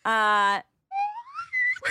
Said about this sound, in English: the hottest of all book tips is that we got a slide whistle that Mallory just discovered